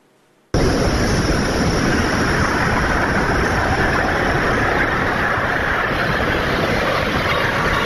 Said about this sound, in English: First, I want you to see the accident itself. And just a warning, if you're squeamish, you're not going to see blood, you're not going to see gore, but you will see this car and you will hear the crash. Take a look.